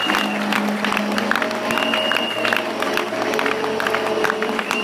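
An audience claps steadily and densely as a clap offering to the Lord, many hands overlapping into a continuous wash of applause, with faint crowd murmur and a sustained low tone underneath.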